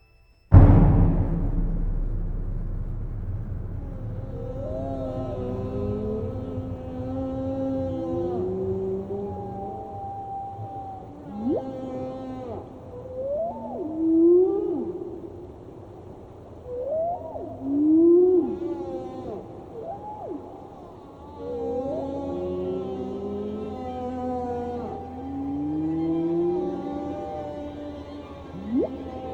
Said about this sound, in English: Alan Hovhaness's And God Created Great Whales, which features recordings of whales